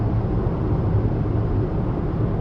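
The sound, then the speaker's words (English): A loud old car engine drones steadily, a thick low rumble with a rough, uneven texture that holds constant throughout, with no voices over it. “Oh, can't hear you. Engine's too loud.”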